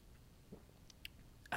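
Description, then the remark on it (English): Quiet sipping of water: a few soft, wet mouth clicks and small slurping ticks spread over a low background hiss, with a louder burst breaking in at the very end. “Sorry, I took a sip of water there, and it took me a little longer than I thought it would to sip it.”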